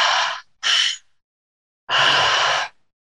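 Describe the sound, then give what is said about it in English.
Loud breathing in and out through the mouth in a breathwork demonstration: two quick airy breaths in and out, a short silence, then one longer, forceful breath. No one speaks. “How it looks, the style that I lead is breathing in and out through the mouth with no pause at the top, no pause at the bottom.”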